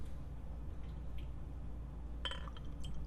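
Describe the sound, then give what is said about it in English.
Liquid pours into a glass over a steady low background hum, with a few sharp glassy clinks near the end as several drink flavors are stirred together in one glass with a spoon, fairly quiet. “D-Pain is currently mixing all the flavors into one glass”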